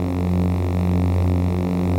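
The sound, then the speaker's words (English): A steady, looping lightsaber hum with a low buzzing core and layered harmonics, holding at a constant loud level without pulses or breaks, heard alone with no voices. “Again, here's the humming loop Marshall made.”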